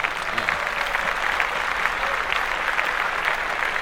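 A steady applause sound effect from a crowd, many hands clapping in a dense, continuous patter at an even, fairly loud level for several seconds, with no voices standing out.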